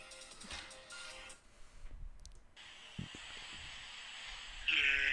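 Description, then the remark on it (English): A goat bleats in wavering, nasal cries, mixed with faint mechanical clicking and hiss, before a louder, brighter bleat bursts out near the end. “There's your fucking goat.”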